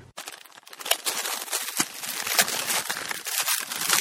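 A gift's packaging being torn open to reveal a Masters of the Universe Battle Cat toy: continuous crinkling and ripping of paper or plastic, dense, with sharp crackly bursts throughout and no voices.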